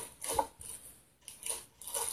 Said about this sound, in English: Okay. Let's see what the dad's lucky dice roll.